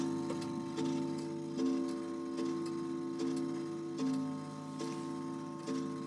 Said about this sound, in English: I'm recording in my living room because when you hear my grandfather clock ring, I want you to open your mouth the most for the word father and clock and say out loud, I hear your grandfather clock.